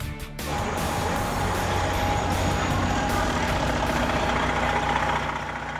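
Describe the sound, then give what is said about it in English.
Many dozens of buses idle together outdoors in a steady, continuous low diesel rumble, with a faint whine and mechanical rattling layered over it, waiting a long time to pick up climate change protesters. “Some of the many, many dozens of buses idling.”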